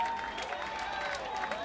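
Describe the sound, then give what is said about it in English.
A packed concert crowd of about 400 people at the Rock and Roll Hotel in Washington, D.C., claps in a steady, dense wash of applause that sounds subdued, with a faint murmur of voices mixed in. “If people aren't clapping a lot, it's because there's just no room to move your arms.”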